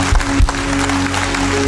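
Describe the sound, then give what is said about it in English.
A church audience gives a hand clap of praise, applauding in a steady, dense wash of clapping that holds at an even loudness, with a low sustained hum running beneath it. “Come on, church, give him a hand clap of praise.”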